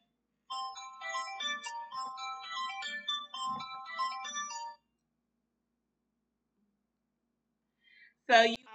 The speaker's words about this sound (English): I apologize for that pause. I'm so sorry about that. My phone started ringing, and I'm actually doing my live on my phone, so I apologize for that.